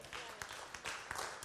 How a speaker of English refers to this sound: Oh, come on, if you're going to clap, you can do a whole lot better than that.